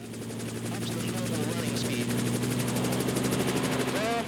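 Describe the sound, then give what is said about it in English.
Helicopter rotor blades spin with a fast, steady rhythmic chop over a constant low engine hum and a high whine, loud and unbroken throughout, with a faint voice now and then underneath; a helicopter with traditional rotor blades, the lever being raised just before takeoff. “Helicopters: Traditional rotor blades”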